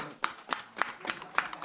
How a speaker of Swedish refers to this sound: Att ni har haft tålamod med oss. En applåd för er.